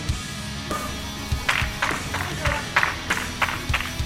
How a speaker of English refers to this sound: Speaking of smart, we got the slow clap.